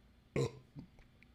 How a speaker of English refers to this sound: It's going to be Burp City, USA in here. I can't even believe it. This is going to be Burp Nation.